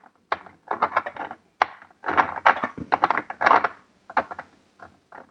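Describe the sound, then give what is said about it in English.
A paper towel held under a thumb rubs around the rim of a glass jar, which is held at the bottom below the ring, in a series of short, scratchy wiping strokes, fairly steady, with brief pauses between bursts. “I've got my thumb with paper towel on top running around the rim.”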